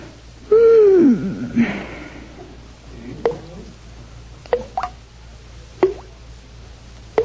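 A bathroom faucet drips into water with about five distinct, hollow plops at irregular intervals, clear against quiet, after a brief descending sigh-like sound at the start.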